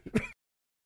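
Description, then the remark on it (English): A single short, sharp cough from a radio host at the microphone, lasting about a third of a second, followed by silence. “I have a cough button, but the time for the cough to reach my throat is not quite as great.”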